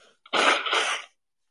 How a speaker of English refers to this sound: Yeah, blowing my nose on a microphone. That's absolutely disgusting.